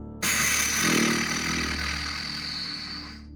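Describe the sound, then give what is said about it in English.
A person blows out through pursed lips, imitating a deflating balloon: one steady, buzzy, squeaky raspberry that starts abruptly and holds for about three seconds before fading. “And then when you breathe out, breathe it all out like you're letting out air out of a balloon. And it makes that squeaky noise.”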